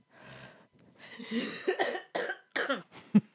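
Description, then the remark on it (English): A series of raspy, rough coughs, about four or five harsh bursts in an uneven rhythm, moderately loud with breathy noise between them and no talking. “I'm sorry about all the coughing, guys.”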